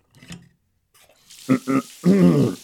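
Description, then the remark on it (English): After a quiet start with a few faint knocks, shower water begins running in a steady hiss. Several short voiced grunts or hums sound over the spray. “Still, my mother always taught me to never turn down a free shower.”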